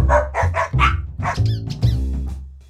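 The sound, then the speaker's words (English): Juniper, the producer's dog, grumbles in the background in a string of low, throaty vocal bursts, rising into a few brief whiny yips toward the end. It is fairly loud, with no talking. “Ah, there's a bit of a grumble in the background.”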